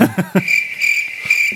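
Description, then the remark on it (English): Crickets chirp in a steady, high-pitched trill that pulses gently and carries on without a break, preceded by a few brief low vocal bursts at the very start. “There's going to be lots of crickets in this podcast.”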